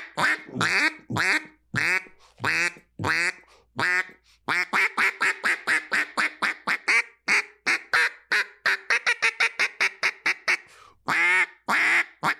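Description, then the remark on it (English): A Casey Underwood Design Realtree Max 7 Live Duck call by Jargon is blown to imitate a mallard: a few loud, drawn-out quacks, then a long, rapid, rhythmic run of shorter quacks that trails off, with no talking. “Check that call out. That's kind of pretty, huh?”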